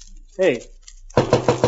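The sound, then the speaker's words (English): A brief voiced sound, then four quick, evenly spaced knocks on an office door by someone who has stepped outside, in a steady rapid rhythm, each a sharp, moderately loud rap. “You just step outside my office, knock on the door again, and I'll show you your mistake.”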